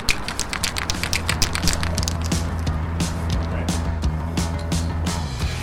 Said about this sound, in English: That guy shaking the spray paint can is Rage 5, a Montreal graffiti artist.